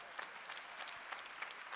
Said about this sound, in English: That's a good one right there. Somebody gets extra points for that clap right there.